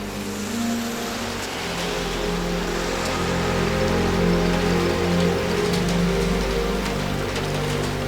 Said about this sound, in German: Also allmählich könnte es wirklich aufhören zu regnen. Ach, solange wir hier im Trockenen sitzen, stört mich es nicht.